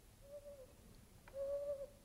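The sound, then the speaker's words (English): An owl hoots twice, two steady drawn-out notes, the second one longer and a little stronger, heard fairly softly against a hushed night background with no one talking. “An owl flies home past Bethesda to a chapel in an oak.”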